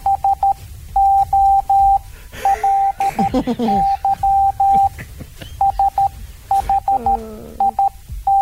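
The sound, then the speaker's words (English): Morse code beeps, from audio of a person who had burnt himself: a steady, fairly loud single-pitched tone keyed in short and long pulses with gaps between, while brief moaning vocal sounds rise and fall underneath partway through. “Okay, that was in Morse code, and trust me, it was true.”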